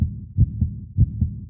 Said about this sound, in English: But when he got to the door of the building and started walking up the stairs to the door, he started getting a cold sweat and his heart was beating so fast.